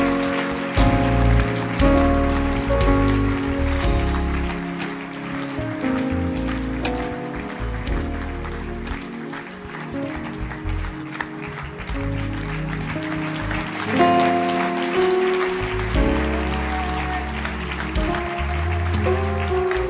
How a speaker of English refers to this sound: Clap your hands for them. Please keep clapping your hands, please.